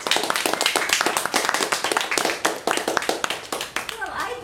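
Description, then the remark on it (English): An audience breaks into steady, dense applause, many hands clapping at once in a rapid, even patter that holds loud for several seconds before starting to thin out. “So, well done, and I think we should give Jean, what? A big round of applause.”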